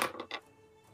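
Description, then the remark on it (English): A quick rattle of dice tumbling across a hard surface: a few sharp clacks in rapid succession, clear, then settling into quiet. “I'm not gonna actually use the Astraea dice, because that's the dice that seems to really want to kill me today. I'll use the Dumisa dice.”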